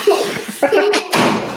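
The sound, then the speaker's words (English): A door swings shut with a solid thud, followed by a brief rattle, while voices talk over it. “All right, now leave. Hi. Close the door.”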